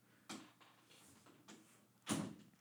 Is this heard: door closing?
yes